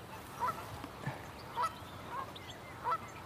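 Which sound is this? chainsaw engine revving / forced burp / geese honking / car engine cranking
geese honking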